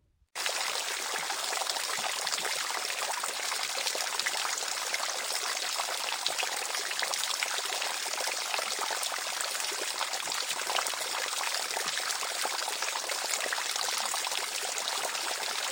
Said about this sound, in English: Water gushed forth, rushing down to the kingdom.